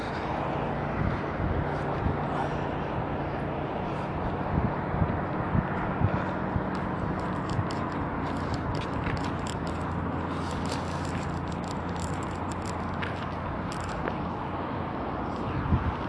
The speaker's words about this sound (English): I don't know if he's putting in water or taking out water. That sound, it's like a truck, and it's here every weekend. Well, most weekends.